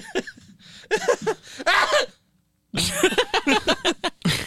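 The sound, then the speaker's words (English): A person lets out an odd, exaggerated sneeze: two rapid runs of short, sharp, voiced bursts separated by a brief pause, loud and fairly high-pitched. “That's how I sneeze.”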